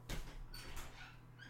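A front door opening: a soft knock at the start, then thin squeaky creaks from the hinges, all fairly quiet over a steady low hum, with no talking.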